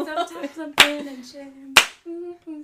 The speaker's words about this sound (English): No one knows the words. No one knows it. So we're clapping. I do it anyway.